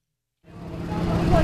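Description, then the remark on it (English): After a brief moment of silence, a steady low rumble of a line of idling cars fades in and holds outdoors on a blustery spring day at Fort Sam Houston, San Antonio. The cars wait with trunks open as volunteers unload boxes of food from a semi, with faint indistinct voices in the background. “On a blustery spring day at Fort Sam Houston, a line of cars idle with their trunks open, waiting as volunteers unload boxes of food from a semi parked nearby.”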